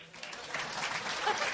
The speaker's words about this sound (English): You can applaud that.